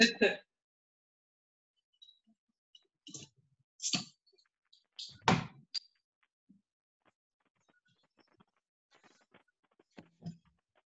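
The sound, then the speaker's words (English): Locked door handles being tried: a handful of sharp, rattling clicks at irregular intervals, a few loud, with fainter taps in between and no voices. “They're all locked. Are they going to go around every door?”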